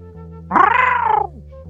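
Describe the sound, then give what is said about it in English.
A single drawn-out cat meow, loud, rising and then falling in pitch over a steady low background hum, with no one speaking. “Is that a cat? Yeah, it was a cat.”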